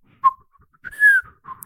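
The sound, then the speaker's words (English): Soft, breathy whisper whistling made on an in-breath: a short chirp, a longer gliding tone, then a faint final note. It is quiet, with airy hiss around each tone. “Because it's got to be a whisper whistle.”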